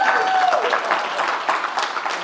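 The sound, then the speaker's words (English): A church crowd applauds its pastors steadily, a dense wash of many hands clapping at an even, fairly loud level throughout, with a faint whistle or cheer rising briefly at the start. “Yeah, we can clap for our pastors, yeah.”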